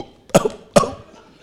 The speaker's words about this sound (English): It means if you want to cough, you have to take permission from Joseph. Joseph, can I cough, please? Say yes. How much can I? About two. Okay, two or three times.